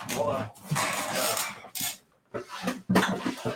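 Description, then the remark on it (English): A storage drawer for graded trading card slabs is pulled open in several scraping, rattling bursts broken by short pauses, with loose contents clattering, fairly loud throughout. “I can just grab a drawer”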